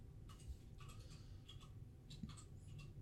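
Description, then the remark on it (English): Soft, irregular clicking of keys as someone types a search into YouTube on a keyboard, quick taps in small clusters over a low background hum, fairly quiet, with no voices. “Are you typing in, what is that, an Instagram name?”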